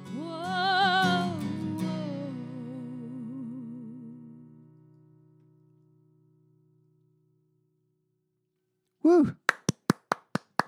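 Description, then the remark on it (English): After a sustained harmonic tone fades into silence, one person claps about six times, sharp, crisp slaps in a quick, slightly uneven run, preceded by a brief vocal sound. “Always like to give at least one silo clap during the show.”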